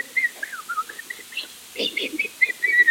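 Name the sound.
person whistling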